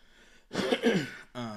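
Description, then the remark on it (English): A single sneeze: a breathy, noisy burst with a voiced, throaty edge lasting under a second, followed right away by the start of someone speaking. “Bless you. Excuse me.”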